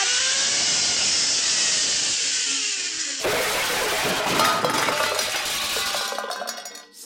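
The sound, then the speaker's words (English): On a zipline bowling alley, a steady whirring rush gives way to a sudden loud crash of tin-can bowling pins knocked over, clanking and rattling together in a metallic clatter that fades out after a few seconds. “Darn, Kapow fainted again and ate one of my tin can bowling pins.”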